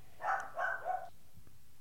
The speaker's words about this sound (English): the dog barking